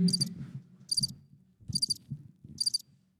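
A cricket chirping sound effect plays: four evenly spaced, high-pitched trills, each a short buzzing burst about a second apart, with low thumping noise beneath.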